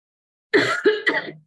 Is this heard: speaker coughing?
yes